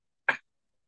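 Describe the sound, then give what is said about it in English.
A person gives one short, sharp hiccup, a quick throaty burst that cuts off abruptly, with silence before and after it. “If you guys couldn't tell, I have a little case of the hiccups right now.”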